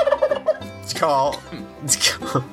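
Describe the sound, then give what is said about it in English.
Turkeys gobble loudly, a rapid warbling chorus of rising and falling calls overlapping in several bursts, with no talking. “I'm bringing the turkeys.”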